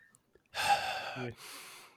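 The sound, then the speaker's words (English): A voice imitates heavy, deep breathing as if behind a mask: a long, loud, airy inhale followed by a hoarse, slightly muffled exhale, with no words spoken. “Oh my God, I can hear him. The deep breathing. Must have been very warm behind that mask.”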